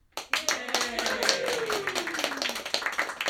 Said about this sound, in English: Frankly, this deserves a round of applause.